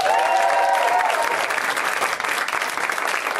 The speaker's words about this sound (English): There's an awesome lineup of comics in the back. Even some special guests tonight that I'm very excited about. They can hear you. Let's clap for them.